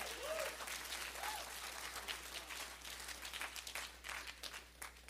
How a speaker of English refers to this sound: Come on, if you're thankful for a God who is Jehovah Shalom, can you give him a hand clap in the house?